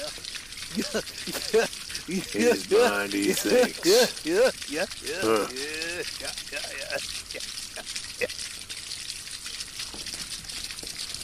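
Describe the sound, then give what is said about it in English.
Steady river water sloshing and rushing, continuous throughout, as an elk wades across the river and pauses; a man talks over the first half before the watery noise carries on alone. “An elk crosses the river and pauses.”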